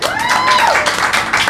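An audience breaks into loud, dense applause welcoming a guest, many hands clapping steadily throughout, with a bright whistle-like cheer rising and falling near the start.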